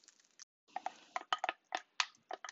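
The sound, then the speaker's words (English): Pancake batter being mixed: a utensil scrapes and clinks against a bowl in irregular, quick bursts with brief pauses between. The strokes are moderately loud and heard alone, with no talking. “Just mixing this batter.”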